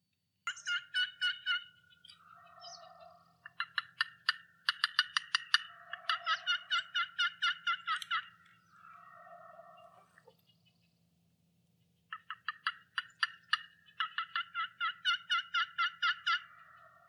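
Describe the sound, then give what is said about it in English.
A wild turkey gobbles loudly in repeated rattling bursts, several rapid gobbles in a row, then a pause and another series, clear with no talking. “It has no choice but to answer you when it hears a loud noise.”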